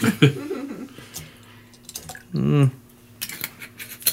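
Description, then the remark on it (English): All of a drink's ingredients are measured at once into a measuring glass: a short gurgling pour rises in pitch midway, with scattered glassy clinks and taps before and after, and a faint voice murmuring at the start. “Do not measure all of your ingredients in the measuring glass at once.”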